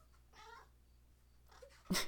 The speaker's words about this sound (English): and you'll hear in the background my cat eating delicious, delicious food, which she always seems to do when I just start recording.